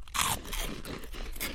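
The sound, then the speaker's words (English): Loud crunching of puffed jalapeno chips being bitten and chewed, a dense run of crisp cracks and crackles with no talking. “Great texture. Mm-hmm. Very crunchy.”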